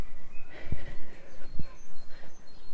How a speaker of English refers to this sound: So what I can hear in the distance is a great tit. Now, the reason that they're so easy to identify, because what you're listening, it's just literally two notes being repeated over and over.